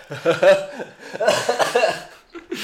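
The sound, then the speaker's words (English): Someone bursts into breathy laughter in choppy bursts that break into a rough cough near the end, loud. “I love that you get a laugh cough out of you.”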